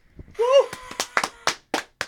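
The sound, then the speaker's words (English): A short vocal whoop is followed by a handful of sharp, irregular hand claps, fairly loud, like a small group clapping unevenly, at a comedy show as a performer comes up on stage. “You gotta clap.”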